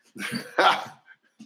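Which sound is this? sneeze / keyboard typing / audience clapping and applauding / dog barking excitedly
dog barking excitedly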